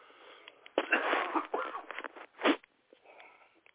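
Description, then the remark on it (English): A person who has been ill coughs a few times, a rough cluster of hacking bursts followed by one sharp final cough, with wheezy, strained breathing in between. “And got this little cough.”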